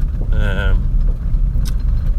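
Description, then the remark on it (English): Steady low rumble of an 18-plate Ford Ranger pickup truck's engine and road noise heard from inside the cab while driving down a forestry track, continuous throughout, with a brief burst of a man's voice near the start. “Hence why episode 1 is called The Truck Cast, because I am currently in the truck. It's a 18-plate Ford Ranger, not mine, company bought.”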